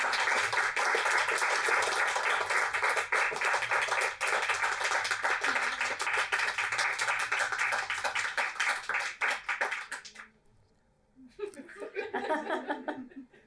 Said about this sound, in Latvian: Jā, nu lūk, aplausu lūk.